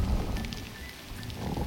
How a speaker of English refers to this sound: To show Jonah that running away wasn't okay, God sent a huge, scary storm. The wind was so strong and the waves were so big, the sailors thought their boat was going to break.